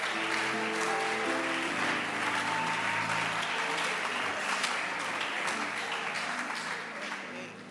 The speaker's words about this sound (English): Clap your hands for the bishop's wives.